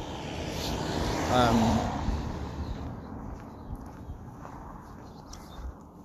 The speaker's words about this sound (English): Car.